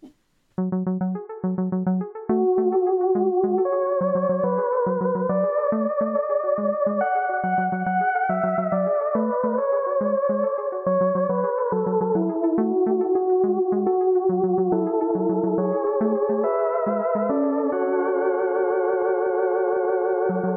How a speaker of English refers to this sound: And that bell means that class is over, as is this episode of Who Is My Doctor?